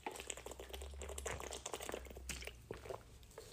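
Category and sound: food or drink, sipping water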